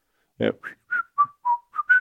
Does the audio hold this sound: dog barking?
no